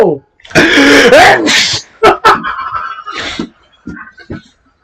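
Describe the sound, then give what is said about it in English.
A loud sneeze with a drawn-out voiced buildup and sharp noisy burst, followed by a few shorter breathy bursts and faint voices in the background. “I'm sneezing.”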